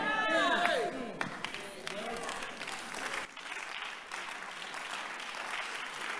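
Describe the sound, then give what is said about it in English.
An audience applauds steadily for several seconds, a dense, crackling wash of many hands clapping. A voice rises over it at the start before the clapping carries on alone at an even level. “Whether you clap or not clap, I'm telling you the truth.”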